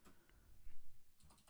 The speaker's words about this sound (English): You are the slowest typer ever on the clickiest keyboard.